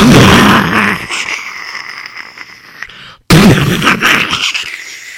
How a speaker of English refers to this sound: And then you heard the planes going flying above. And unfortunately, they dropped bombs. And there were a lot of explosions.